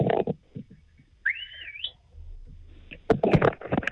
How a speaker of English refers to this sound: Short and sharp. Left me wanting more, is what I thought. A whistle's a hard thing to come, to hear through a phone line, I think.